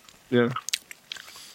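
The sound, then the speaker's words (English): A short hummed vocal sound, then chewing of a lemony hard candy on both sides of the mouth: a few quick, moist clicks and crunches scattered over about a second, fairly quiet. “I'm only supposed to chew on one side.”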